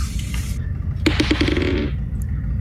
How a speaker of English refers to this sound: Doo-doo, you alone recognize the sound of a biodiesel engine, like the one you had in your van.